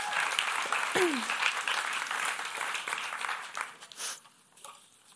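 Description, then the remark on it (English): An audience applauds the speaker's assistant with dense, steady clapping for about four seconds before it tapers off and fades; a brief sliding cheer or whoop rises out of the crowd early on. “Round of applause for my beautiful assistant.”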